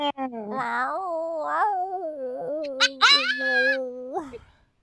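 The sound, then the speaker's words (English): A person imitates a cat in heat, letting out one long, drawn-out yowl that wavers and bends in pitch, fairly loud, with no other sounds around it. “Have you ever been dating someone and just been really, really weird and like done the cat in heat sounds at them?”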